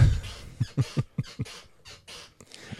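A reclining chair squeaks and creaks several times in quick, uneven succession, with short pauses between the squeals and no one talking.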